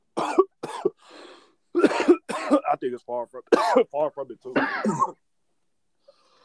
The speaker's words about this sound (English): My bad, I passed you my cough.